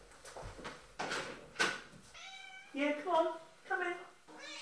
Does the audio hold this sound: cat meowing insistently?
yes